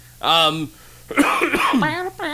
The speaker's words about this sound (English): aside from that, you'll have to excuse the coughing this episode. Don't excuse it. Write him. Write him and complain, please.